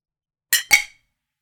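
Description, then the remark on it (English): Two quick, bright clinks of glasses touching in a toast, each with a short ringing tail that fades within a fraction of a second; no voices. “Fucking cheers to that.”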